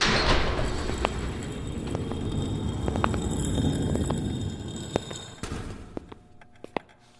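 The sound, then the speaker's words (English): A heavy door slides open with a long, rumbling rush that fades after several seconds, followed by a few scattered clicks and knocks. “Doors open.”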